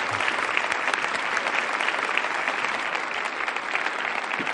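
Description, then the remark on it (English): A sustained round of audience applause for guest speaker David Velasco Chedraui, mayor of Xalapa City, dense and steady, with many hands clapping at once in a continuous crackling wash that holds an even loudness throughout. “Please give him a grand round of applause.”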